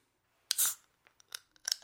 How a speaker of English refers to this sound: There's that can pop. There you go.